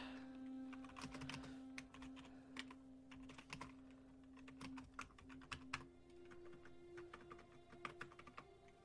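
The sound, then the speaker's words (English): Rapid, irregular clicks of typing on a computer keyboard, crisp, with a steady low electronic hum running underneath and no voices. “She's quite loud, but I mean, everyone's keyboard's so different. And it also depends on your mic placements.”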